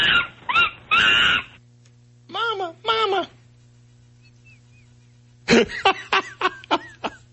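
A baby monkey cries as it is ripped from its mother's arms, in shrill, wavering shrieks that come in three bursts, a few long wails followed by a rapid string of sharp, rising squeals, with short silences between.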